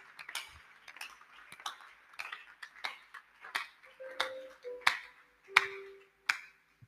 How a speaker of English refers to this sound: Oh, this is your clapping.